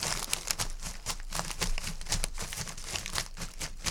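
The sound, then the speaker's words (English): Paper and plastic crinkle and crunch in quick, steady bursts, a foley rustling patter imitating a video game character's running footsteps, with brief sharp crackles throughout and no talking. “What if I do, like, a paper-plastic medley?”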